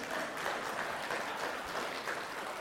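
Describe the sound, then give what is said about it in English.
An audience claps steadily, many hands producing a dense, continuous patter of applause at an even volume throughout, with no voices standing out. “Yes, we can clap.”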